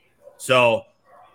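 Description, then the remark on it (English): A single sharp bark from the dog Finny rings out loud, a brief harmonic yelp that stands alone against quiet. “get the dog.”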